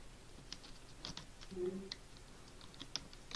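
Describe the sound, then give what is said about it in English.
Quick, irregular clicking of keys on a computer keyboard as someone types into a game console, fairly quiet, with a faint low murmur briefly in the background. “I'm typing in my console now!”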